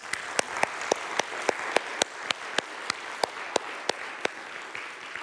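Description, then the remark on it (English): A church audience applauding steadily in praise of God, with sharp claps landing in an even rhythmic beat over a continuous wash of crowd clapping. No voices are heard. “But we're just going to lift up God and praise his name with our hands in applause because he deserves it.”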